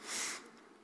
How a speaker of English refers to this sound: No, past couple times I'm preaching, all of a sudden I get the sniffles.